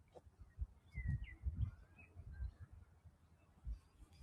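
A few faint bird chirps from a bird on power lines outdoors, short, scattered calls over a low rumbling background, with no one speaking.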